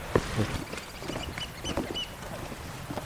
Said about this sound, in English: A little bit of oyster catcher. Lovely, aren't they? They look so proper inviting. Proper little smugglers in nets, aren't they?